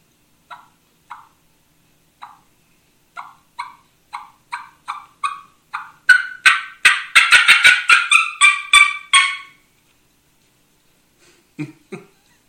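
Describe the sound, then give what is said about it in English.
A turkey mouth call imitates a fly-down cackle: sparse single clucks speed up into a loud, rapid flurry of cackling, then stop, followed by a brief low squawk. “So when they get ready to do that, they get kind of nervous and they begin to cluck a little bit faster, and then they explode off that limb.”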